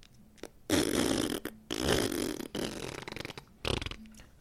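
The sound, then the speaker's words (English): A person blows loud, wet raspberries with their mouth, imitating farts in several sputtering bursts of about a second each, with short pauses between. “So … enters, making an audible fart noise.”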